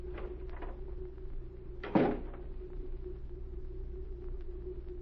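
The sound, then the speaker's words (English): A door shuts once with a single dull thud about two seconds in, over a steady low mechanical hum and rumble that continues throughout. “A moment later, as Agent Z carefully studied the papers from the Colonel's desk, the door opened again.”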